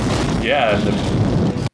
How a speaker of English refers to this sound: It was the insides of some Piccolo Pete's. And again, we get an awesome spark-heavy jungle explosion here, which I have already professed my love for throughout this movie.